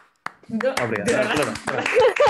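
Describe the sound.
A few sharp, scattered hand claps ring out over voices and light laughter, the clapping brief and uneven rather than a sustained round of applause.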